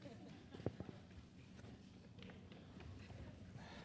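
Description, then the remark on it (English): A flurry of many hurried footsteps of children leaving a room after being dismissed, thumps and patters overlapping, with faint voices murmuring underneath. “Stampede of footsteps.”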